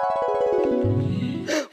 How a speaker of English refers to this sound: What the fuck was that? It was a sneeze. That ain't no fucking sneeze. It was coming on, and I tried to. I didn't want to release it at like its full strength